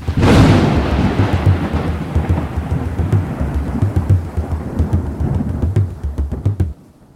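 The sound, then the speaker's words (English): A thunder sound effect: a loud clap of thunder breaks out and rolls on as a deep, rumbling roar for several seconds before cutting off, with a steady hiss like rain behind it and no voices. “I assume this is going to be a thunder sound effect, perhaps some beating drums, something at this point.”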